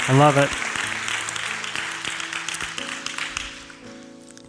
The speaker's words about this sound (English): Bless you, man. Good job. Give him a hand.